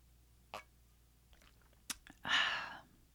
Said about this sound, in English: Let me just have one last sip before I get lip gloss all over this.